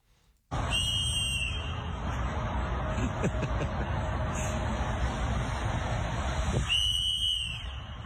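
A shrill, steady whistle sounds for several seconds over a broad wash of crowd and street noise, starting abruptly, dipping faintly in the middle and returning stronger near the end.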